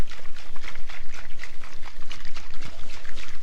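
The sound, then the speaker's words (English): Cocktail ingredients, including egg white and no ice, rattle and slosh in a shaker as they are shaken to a froth, shaken hard in a quick steady rhythm of bursts, loud with no one talking. “Right, that's all the ingredients mixed together.”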